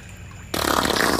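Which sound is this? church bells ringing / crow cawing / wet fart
wet fart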